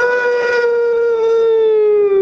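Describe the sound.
A person imitates a cow's moo with one loud, sustained voiced note lasting about two seconds, its pitch sliding slowly downward. No other sounds accompany it.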